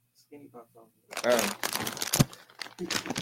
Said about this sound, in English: Baby, well, don't worry about my damn bag, okay? The production in here tell me what to do. It's my damn popcorn. I can eat it if I want to.